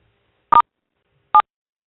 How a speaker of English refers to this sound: I'm going to unmute everyone, and you're going to hear a series of beeps, and then we'll go ahead and take questions. So hold the line for one moment.